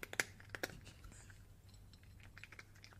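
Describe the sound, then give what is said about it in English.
A cat crunches dry kibble, a few sharp, bright crunches at the start giving way to softer, irregular chewing clicks over a faint low hum. “It's a cat eating kibble.”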